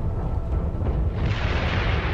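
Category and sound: nature, thunder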